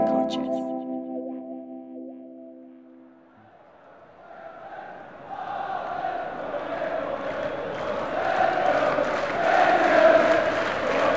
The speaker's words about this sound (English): Football fans will know these sounds well. Hope, anguish, screaming at the top of your lungs from sheer happiness. That emotional roller coaster we all love this sport for.